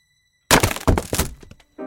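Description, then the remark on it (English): An unpainted violin breaks in a violin maker's workshop, its neck snapping off, with a sudden loud crash: several sharp wooden cracks and thumps tumble together for under a second, fade out, then a short buzzy tonal ring follows. “The crash in her husband's workshop sent Rosanna running.”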